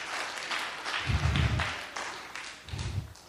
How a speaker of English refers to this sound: Come on. Clap your hands for whoever said that.